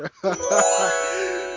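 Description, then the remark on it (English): A bright chime-like ding rings out clearly and fades slowly over about a second, with a brief muffled voice-like sound overlapping its start. “Can we put in, like, a ding whenever I take a drink about something problematic?”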